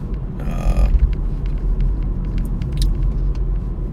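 Steady low rumble from inside a car driving in traffic, with a brief hissing burst near the start and faint clicks and rattles scattered over the droning road noise.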